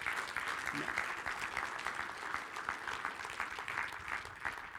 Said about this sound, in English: And so we look and we clap and we praise God for his goodness. Así que nosotros alabamos a Dios, lo bendecimos por su bondad.